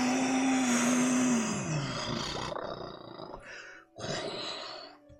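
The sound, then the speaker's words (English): A dragon's loud, deep roar swells and bellows for a couple of seconds, then breaks into rumbling growls and a final harsh snarling burst, with no voices. “And the dragon lets out this bellowing roar.”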